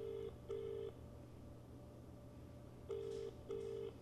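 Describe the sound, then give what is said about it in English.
An outgoing phone call to an aunt rings on the line: two pairs of short, steady double-ring tones separated by a pause, clear and fairly loud over a low background hum, with no one talking. “Oh, wait, it's calling her.”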